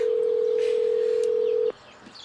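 A steady, continuous telephone tone from a phone calling the theater info line of Collins Road Theaters holds loud and even for nearly two seconds, then cuts off abruptly, leaving faint background hiss.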